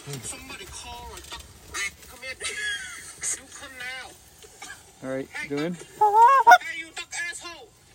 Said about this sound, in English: Don't you worry about those geese. We don't want them. Get them out of here.